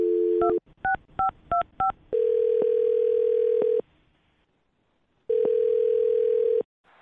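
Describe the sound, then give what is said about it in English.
A quick run of touch-tone dialing beeps, then the steady electronic ring of an outgoing phone call placed from the Brooke and Jubal in the Morning radio show, sounding twice with a silent pause between rings; no one speaks. “Well, I'm going to call him right now and see if he'll pick up our phone and then find out if he enjoyed your date or not.”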